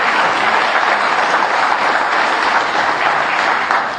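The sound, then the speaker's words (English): An audience at the Jefferson School gives a round of applause for the speakers, clapping steadily for several seconds, a dense, even wash of many hands with no pauses and no voices, holding at a fairly loud level throughout. “Well, let's have a little round of applause for our speakers,”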